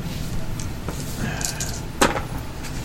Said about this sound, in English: Whoa! I think I'll throw my dice on the floor.